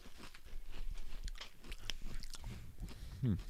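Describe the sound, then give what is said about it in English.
Crunching of ranch-seasoned kettle-cooked potato chips: a steady run of crisp, crackly bites and chewing, with a brief low voiced sound near the end and no speech. “About the second or third chip, you start getting that ranch in the back end.”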